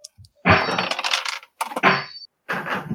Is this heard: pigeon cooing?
no